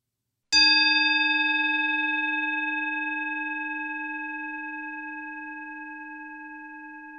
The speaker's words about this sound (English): Yes, please put a meditation bell in at the beginning.